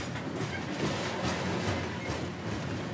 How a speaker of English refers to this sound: Freight trains rumble through La Junta morning and night, while Amtrak's Southwest Chief pops in a couple of times a day.